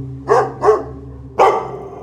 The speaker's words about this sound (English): Weird things would happen while he was gone. My dogs would just stare into the doorway or the stairway and just bark and bark and bark and bark and bark into the dark.